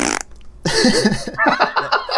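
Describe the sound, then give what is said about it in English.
A person blows a loud raspberry imitating a fart: a brief sputter, a short pause, then a long, buzzing, wobbling blast of lip noise lasting well over a second. “It's just my fart noise.”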